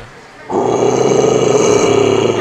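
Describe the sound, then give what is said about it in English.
A man lets out a sustained, gritty metal-style vocal growl, loud and raspy with a steady roaring tone, starting abruptly after a brief quiet moment and holding for about two seconds. “I have a great metal growl.”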